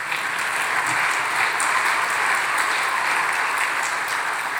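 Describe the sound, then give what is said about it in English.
A church crowd applauds a musician who has just been introduced, a dense, even wash of many hands clapping that holds at a constant loud level for several seconds without pause or voices. “Just thanks for clapping for him and not me, but so that's all right.”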